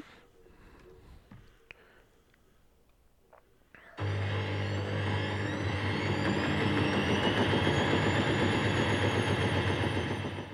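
After about four seconds of near silence with a few faint clicks, a washing machine suddenly starts up with a loud, steady mechanical roar, a deep hum, and a high whine that slowly rises in pitch.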